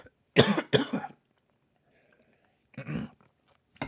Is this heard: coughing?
yes